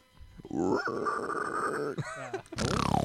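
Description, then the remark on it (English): A person imitates animals with their voice: a long, growly pig grunting, then a short harsh rasp and a loud breathy dinosaur roar at the end, fairly loud. “let's get your very, very, very good pig impression and then follow that up with a dinosaur impression.”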